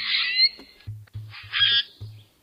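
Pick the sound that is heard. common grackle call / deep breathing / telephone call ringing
common grackle call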